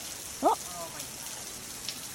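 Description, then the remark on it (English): A rainstorm pours down in a steady, even hiss that fills the whole clip, with one short voiced sound from a person rising briefly above it near the start. “That's a good storm, though.”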